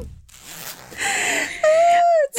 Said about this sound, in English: Oh, I unzipped my hoodie. Could y'all hear that? It sounded like a toot.